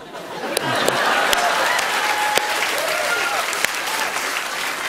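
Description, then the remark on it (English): A crowd at a Grammy party gives Nancy Pelosi a standing ovation, applauding steadily and loudly, a dense wash of many hands clapping, with a few sharper individual claps popping out and faint voices and cheers mixed in underneath. “Yeah, which was great until she realized they were all clapping like this.”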